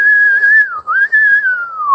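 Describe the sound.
A man repeatedly whistles the same catcall in a crowded museum: a loud, steady note, a brief dip, then a long tone that slowly slides downward. No one speaks.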